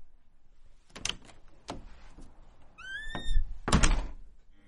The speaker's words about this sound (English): Okay, let me open the door and close it.